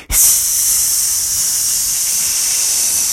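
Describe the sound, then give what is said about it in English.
A snake's hiss, from the snake Slick Sammy slithering in through an opened door, bursts in abruptly and holds as one long, steady, sharp high-pitched sound for about three seconds, loud and unbroken. “And he opened up the door and in slithered a friend.”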